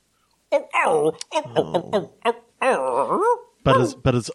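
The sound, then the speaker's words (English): A person imitates a dog in an old English-style accent with a run of barking, yipping and whining vocal sounds, fairly loud, in several short bursts with brief pauses between. “It's actually going to be an old Englishy accent, but barking.”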